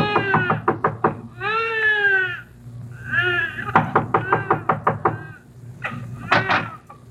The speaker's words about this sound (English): Then you knock on a door that opens into a room where Tommy Mannin was born.